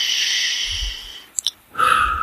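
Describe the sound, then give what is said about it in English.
A long, airy breath drawn in through the nose, followed by a brief pause and a soft exhale out through the mouth, fairly loud, with no talking. “In through your nose, out through your mouth.”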